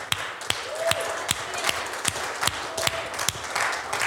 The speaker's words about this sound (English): And I just think it's appropriate to give the Lord and our pastors a hand clap.